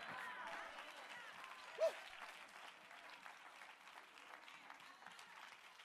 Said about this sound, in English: He likes it when I lift my voice. He likes it when I clap my hands. He likes it when I say, I need you, Jesus.